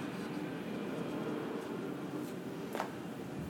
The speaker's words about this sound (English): Here goes an airplane.